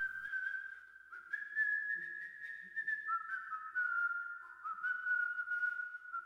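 human body sound, person whistling a tune

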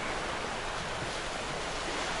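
nature, ocean waves

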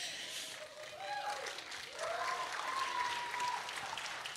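crowd, audience applause and cheering

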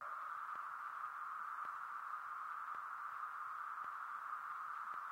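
sound effect, white noise

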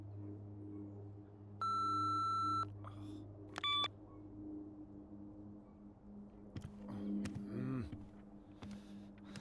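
signal or alarm, answering machine beep

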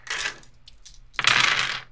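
dice rolling

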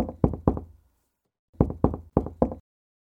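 household object, knocking on a door

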